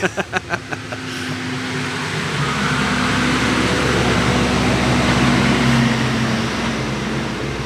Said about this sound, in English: It's a big truck coming by.